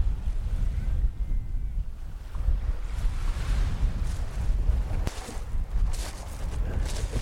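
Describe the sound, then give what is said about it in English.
Waves lap and wash against a huge expanse of shingle shoreline under heavy cloud and a steady rumble of wind, with a few brighter surges of water breaking near the end. No voices. “So it's quite unusual to get this sort of huge expanse of shingle.”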